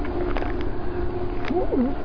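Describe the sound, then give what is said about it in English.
A short, warbling crow growl rises and dips in pitch near the end, moderately loud over a steady low rumble of background noise. “I think that was a crow growling, but this is ridiculous.”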